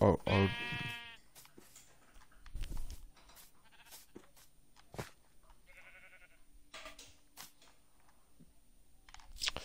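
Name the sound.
sheep bleating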